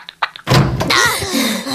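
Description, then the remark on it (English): A closet door next to three vases in a living room bursts open with a loud wooden bang after a few quick thumps as people pop out, followed by rattling, scuffling movement and muffled vocal noises. “And they pop out of the closet door next to the three vases, which I thought was a pretty good gag.”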